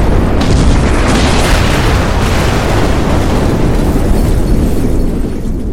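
An island explodes and destroys itself: a massive, sustained explosion roars without letup, a dense wall of deep rumbling and crackling noise that stays loud for several seconds before easing only slightly at the end.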